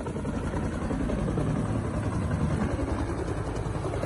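A helicopter taking water from a swimming pool to fight fires roars steadily, its deep rotor thumping pulsing through a continuous wash of engine noise for the full few seconds, with no voices.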